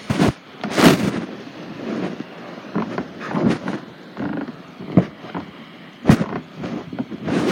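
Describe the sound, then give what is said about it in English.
A laptop being shifted and adjusted: a run of irregular knocks and muffled thumps with scraping, rustling handling noise in between, some bumps sharp and loud. Nobody speaks. “I'm going to put down my phone for a second. I'm going to adjust my laptop.”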